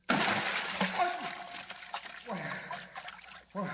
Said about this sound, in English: plummeting down through inky black space, lands in a deep vat of ice-cold water. Listen.